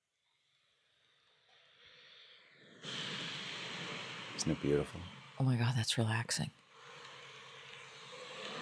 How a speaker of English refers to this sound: Oh my God, is that like somebody driving by in the rain? It's called Vinyl Crackle.